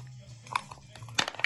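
Dice clatter in a few quick, sharp clicks and rattles, rolled for Ipswich in a dice football match against Watford, with a low steady hum underneath and no talking.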